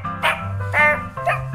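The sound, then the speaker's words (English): A dog barks three times in fairly quick succession, short sharp barks spaced evenly apart, over a low steady background hum. “Here is my dog.”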